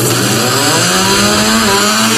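A loud, continuous buzzing whine resembling a chainsaw, steady and harsh for about two seconds with a rising tonal drone partway through, meant as a screeching car effect.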